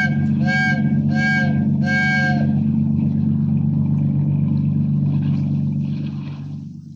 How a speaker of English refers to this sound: Signal that freighter to heave to. Give her the whistle.